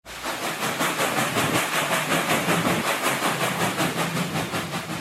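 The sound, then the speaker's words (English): A steam train rattles steadily along the tracks, its rapid, even rhythm of chugs and clacks continuing loud for the whole stretch, with a constant hiss beneath and no voices. “To their surprise and relief, the train took off shortly after they boarded, picking up steam as it rattled along the tracks in a rhythm of its own.”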